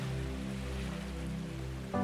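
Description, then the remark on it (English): A steady, continuous wash of ocean waves, soft and even, with a low sustained hum running underneath and no one speaking. “So just listen to the sounds of the beautiful, deep blue ocean and rest.”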